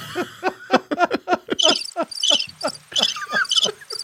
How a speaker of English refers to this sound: What's that? Crickets. No, that's a good joke. That was a good one. You don't have crickets after a good joke. Just after your jokes.